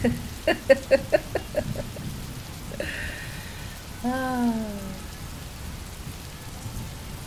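Heavy rain pours steadily on a street with traffic, a dense continuous hiss, amid horns blowing and cars braking sharply. Early on a quick series of short tonal chirps pokes through, and midway a brief falling, drawn-out tone sounds over the downpour.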